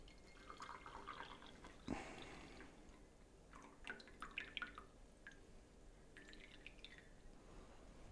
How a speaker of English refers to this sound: And then we're gonna go into the pouring of this tea.